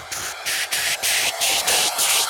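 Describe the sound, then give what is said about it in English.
Bright, hissing white noise surges in a quick series of pulses, about six bursts with short dips between them, loud with no other sounds; a white noise swell as used for dramatic transitions in electronic music. “It's just a version of that, of like a white noise swell.”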